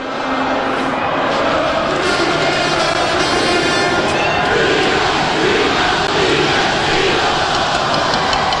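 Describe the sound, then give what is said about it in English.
A large street crowd roars and cheers continuously, huge throngs surging through the streets below a fifth-floor window of the University of the Arts' Miriam Theater, a dense wall of overlapping shouts and voices that stays loud and steady throughout with no pauses. “Man, that's a big crowd.”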